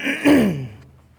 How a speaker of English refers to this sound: Something's happening in my throat, so if I cough a couple times, you'll know why.